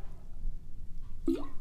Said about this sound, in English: Let me have a little drink of my water because, you know, I'm getting a little dry in the throat.